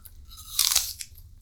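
A loud crunch of teeth as two people bite into crisp apples, followed by a few smaller crunching chews, with no talking.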